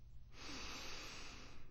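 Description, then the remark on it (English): A single long, airy sniff drawn in through the nose at an old Indian basket with its lid off, fairly soft, lasting over a second with no talking around it. “Oh, and that one sniff took me back to rainy day afternoons when hidden birthday presents and crayons and paper and books and games had all come out of that cupboard.”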